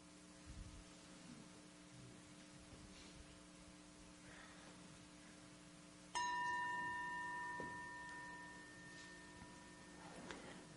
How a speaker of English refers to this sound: So my chime just then is indicating an opening of the evening, the next 10 minutes, for any comments you might want to make or questions.